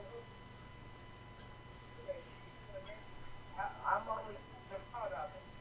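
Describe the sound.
A thin, tinny voice over a phone line breaks up, arriving in short choppy fragments with gaps of steady hiss and a faint electronic hum between them.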